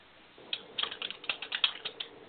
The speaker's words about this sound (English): I am typing the comments in if you guys are with us on Facebook.